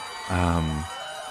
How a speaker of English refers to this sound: An alarm rings loudly throughout the whole institution. There's chaos everywhere.